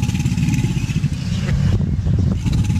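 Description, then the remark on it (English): A mating alligator's deep, throbbing rumble, a loud, continuous low growl with a purring, engine-like texture that holds steady for about three seconds with no talking. “You want to hear a mating alligator?”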